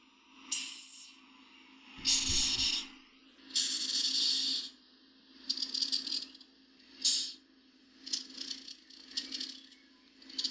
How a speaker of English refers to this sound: I'm basically saying that for the friends of mine that I have told about this episode who said they wouldn't listen to it because I was playing a hissing sound. So now you know it's coming.